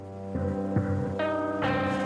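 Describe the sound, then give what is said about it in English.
A low, steady droning hum recorded underwater in a bay, not made by any machine, that throbs gently and swells in brightness with buzzing overtones, continuous and fairly loud, with no voices over it. “The humming sound is not machine-made.”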